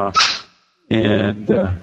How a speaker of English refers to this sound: We got a little dog here barking. So that is not a ghost bark dog. That is a real dog. Well, sort of a real dog. It's about the size of a yard rat. Like a squirrel.